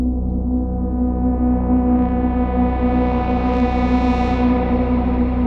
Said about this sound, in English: You know, messing with drones and messing with a certain sound, and then adding frequencies and taking them out and adding them, and you know, whatever. It's kind of cool.